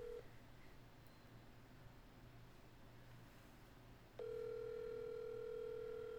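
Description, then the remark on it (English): An outgoing phone call rings on the line: a short electronic tone cuts off, a few seconds of quiet hiss follow, then a loud steady ringback tone sounds again. No one speaks. “Can you *67 from my phone?”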